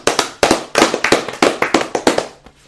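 A quick run of about a dozen sharp, loud hand claps in a steady, slightly uneven rhythm, fading out at the end, with no voices over them.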